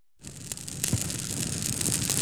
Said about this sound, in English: I just have to say that since the tower is burning and we have a bonfire, there is no reason that we should not be eating vegan marshmallows right now.